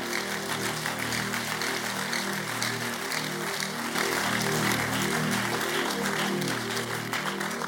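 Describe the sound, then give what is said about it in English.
An audience claps in praise to the Lord, a dense, steady wash of many hands applauding at once with a sustained low hum beneath, continuing evenly throughout without any voices. “Lift up your hands and give the Lord a mighty clap of praise.”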